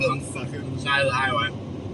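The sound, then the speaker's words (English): Steady low rumble of road noise inside a car moving on a highway, a continuous droning hum, with a voice speaking briefly over it partway through. “So we're doing a car cast here.”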